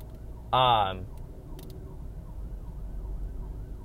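An ambulance siren, responding to an accident, lets out one short, loud whoop with a sweeping, wavering pitch. Then it stops, leaving a steady low rumble of traffic.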